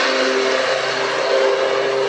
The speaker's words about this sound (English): The lawnmower is chasing us. It is.